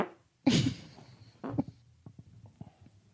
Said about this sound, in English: So, how does that mic smell? Oh, and a sneeze, huh? Allergic to that fart. Ugh, it's got to smell horrendous over there right now. Ah, it's not good. The mic is all covered in your fart.